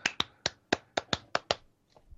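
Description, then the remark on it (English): About eight sharp hand claps in a quick, uneven rhythm, imitating how a crowd at a ring claps after the chant 'you're going to get your fucking head kicked in', followed by a couple of faint softer taps, with no talking. “And then they started my favorite terrible chant of all time, which is, take a deep breath, you're going to get your fucking head kicked in, and then they clap like this.”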